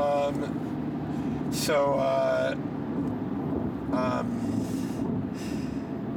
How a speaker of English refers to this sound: We're in some kind of strange construction zone where we're just in two lanes of very narrow traffic with all the world's trucks. I'm terrified.